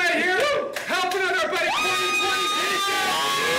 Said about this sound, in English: They are loud. The crowd seems small for an all-lady rap battle.